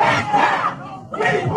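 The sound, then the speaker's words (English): A crowd of many voices shouts together in loud, ragged bursts at an outdoor street protest in Kenosha, Wisconsin, gathered to denounce a police shooting, where police used tear gas; a brief lull in the middle before the chanting surges back, dense. “Police used tear gas on the crowd that had gathered to denounce the shooting of Jacob Blake, an African-American man who appeared in video to have been shot 7 times in the back as he leaned into a vehicle.”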